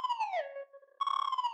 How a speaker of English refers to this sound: Once again, they wave in front of its eyes, but this time, to their surprise, the eyes light up red and three beeps emit from its speakers.